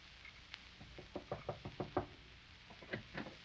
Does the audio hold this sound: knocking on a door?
yes